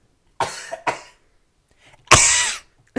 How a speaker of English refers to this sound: You went away from the mic to cough and then you came back and coughed. What's wrong with you?